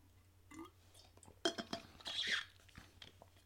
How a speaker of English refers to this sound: Actually, let me drink a little water. And then we'll get into it.